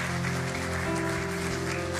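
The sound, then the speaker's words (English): A crowd applauds steadily during a service for about two seconds, a dense, even wash of clapping that holds at constant loudness over a low, sustained musical tone underneath. “And so I think maybe, can we just give Miki one more round of applause?”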